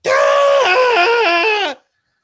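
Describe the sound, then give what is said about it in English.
A person lets out a loud, high-pitched wavering squeal for nearly two seconds, imitating a lobster screaming as it goes into a boiling pot, the pitch wobbling up and down before cutting off abruptly. “Yeah, can you imagine if, would people really eat lobsters if in the kitchen when at the restaurant, they hear them screaming as they're going into the boil?”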